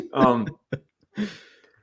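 A voiced, drawn-out intake, a brief sharp catch, then a breathy, hissing burst trailing off, like a sneeze that is partly held back. It is moderately loud, with no talking around it.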